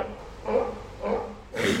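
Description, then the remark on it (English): Three short, breathy snorting alarm calls, known as sneezes, from alarmed birds related to ducks and geese, evenly spaced about half a second apart, moderately loud against a quiet outdoor background with no talking. “That's a sneeze. They're alarmed.”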